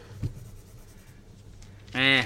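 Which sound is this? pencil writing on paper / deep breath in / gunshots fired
pencil writing on paper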